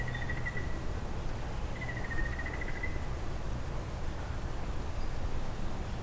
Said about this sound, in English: Frog.